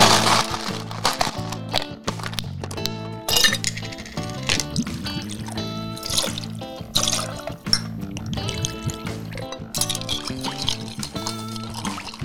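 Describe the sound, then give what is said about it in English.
Glass clinks repeatedly as a Vucare cocktail is mixed with Echo rye whiskey, with liquid pouring and trickling in between, all set against a steady tonal background with no one talking. “So we're going to take a break and you're going to mix this up a Vucare with the delicious Echo rye whiskey.”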